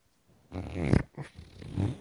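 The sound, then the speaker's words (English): A low, bassy fart imitation made with a hand, recreating farts made during sleep: a buzzy, rumbling blurt that swells, briefly cuts out, then sputters back for a second rougher burst. “there are some nights I have some rough nights in my sleep where like they're just like these low bassy ones.”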